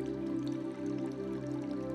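Fresh spring water trickles steadily from rocks along the interior wall of a cave in a continuous, gentle flow, with soft drips over a low, resonant hum and no voices.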